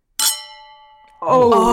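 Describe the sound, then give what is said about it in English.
A single bright clink of gin cocktail glasses meeting in a toast in front of a microphone, its high ringing tone sustaining and slowly fading for about a second before voices break in. “Wait, let's cheers in front of the mic.”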